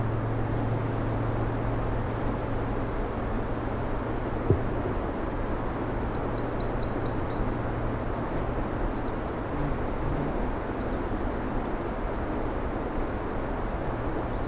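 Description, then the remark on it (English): A Nashville warbler sings three separate phrases of rapid, high, thin notes, spaced a few seconds apart, over a steady low rumble of background noise. “What's that sound? So it's Nashville warbler.”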